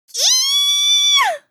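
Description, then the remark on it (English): A child lets out a single piercing scream, loud, holding one shrill, steady pitch for about a second before it breaks and drops away. No talking. “Suddenly they hear a child's piercing scream.”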